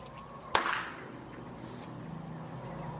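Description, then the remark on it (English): A single sharp firecracker bang, set off inside cardboard with a blood pack taped to it as a homemade bullet-hit effect, cracks out loud and sudden, with a short ringing tail that fades within a fraction of a second, leaving a steady low hiss and no voices. “Now all you need to do is set the firecracker inside and light it.”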